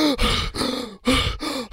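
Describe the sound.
A person gasps for air after holding their breath, in a rapid series of four strained, voiced breaths with groaning edges, loud, with no talking.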